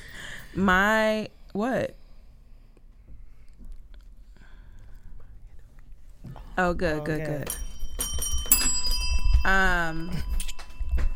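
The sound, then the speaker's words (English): A single bright bell strike rings out and lingers with a sustained metallic shimmer, heard over people talking. “That deserves a bell ring.”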